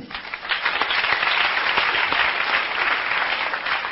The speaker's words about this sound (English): How many parents here by applause?